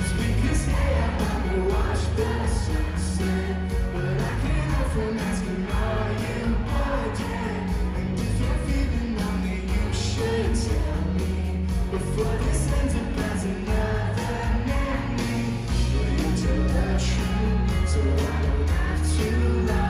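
A live concert song plays loud and dense, with a steady thumping beat and full band sound, while a crowd sings along and whoops throughout, singing the part of an absent featured singer.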